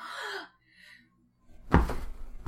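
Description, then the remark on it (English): Hay bales pushed off a loft hit the ground below with heavy, low thuds: a loud rumbling impact, then another sharp thump a moment later, after a brief breathy sound and a short quiet pause. “pushes all the hay bales off the loft and down onto the ground below”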